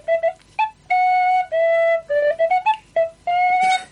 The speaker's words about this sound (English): Thank you. Beautiful. Not a flute. It's a tin whistle.